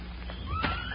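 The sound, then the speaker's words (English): A horse lets out a brief, rising whinny, with a single hoof thud in the middle, over a steady low rumble of background noise; the horses, Buckshot and Joker, have their hooves padded with toe sacks and are being left away from an oak tree. “Leave the horses over here away from the oak tree.”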